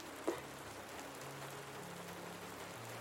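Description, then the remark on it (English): Steady rain falls in a continuous soft hiss, with one slightly louder drop or patter near the start and faint low sustained tones humming underneath; no one speaks. “it is raining where I am today, and it makes me want to snuggle up and get comfortable and fall asleep listening to the rain.”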